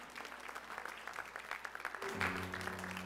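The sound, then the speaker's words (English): An audience claps in praise of Jesus during worship, a dense, steady patter of many hands. Partway through, sustained organ-like chords swell in underneath the continuing applause. “Can we give Jesus a hand clap of praise in the house today?”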